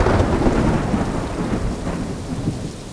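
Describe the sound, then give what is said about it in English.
Heavy rain pours steadily beneath a deep, rolling rumble of thunder, a loud, continuous storm with no voices. “Scary movies often start on a stormy night with fog, rain, thunder, lightning, and strong winds lashing against the side of an old house high up on a hill, for example.”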